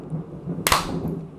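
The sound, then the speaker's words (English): A single sharp thunder clap during a bad rainstorm bursts out of a low, steady background hum, a loud bright crack that fades away within about half a second. “Did that thunder? Was that thunder?”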